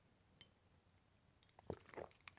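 Someone takes a quiet sip of beer from a plain bottle with a white sticker that says "beer" in black letters: a short cluster of soft slurping and wet mouth sounds after a near-silent pause, with no talking.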